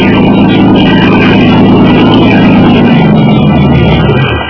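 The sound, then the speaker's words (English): A motor launch filled with men and towing a small boat, off Jarvis Island, comes in to dock; its engine drones loudly and steadily, a thick rumbling hum with churning noise, easing slightly just at the end. No voices are heard. “Leading toward us was a motor launch filled with men, and with a small boat in tow.”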